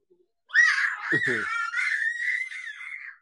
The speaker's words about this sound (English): just screaming randomly for no reason right now.